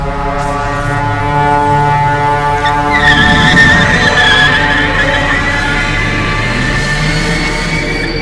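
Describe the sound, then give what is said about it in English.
A car engine roars loudly and steadily at high revs as the vehicle moves at its maximum speed, with a sharp tire screech cutting in partway through as it accelerates hard. “I have the vehicle moving at its maximum speed.”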